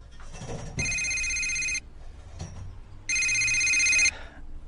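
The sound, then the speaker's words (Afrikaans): A telephone rings twice with a call from the university, each ring a steady, bright, high-pitched electronic trill lasting about a second, separated by a pause over a low background murmur. “Ek moet ongelukkig die oproep neem.”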